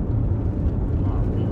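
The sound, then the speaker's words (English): A sports car engine revs with a deep, steady rumble, loud, holding a constant growl for the brief moment without any clear rise or fade. “That's a midlife crisis car right there. Yes. Bro just wants to rip.”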